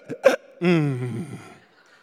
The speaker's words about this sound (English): It's okay. We're just getting rid of hiccups.